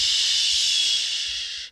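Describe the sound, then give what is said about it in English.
A steady, airy whoosh of wind through leaves, a bright hissing rush that holds even for under two seconds before cutting off quickly. No voices are heard. “The wind rustles the leaves.”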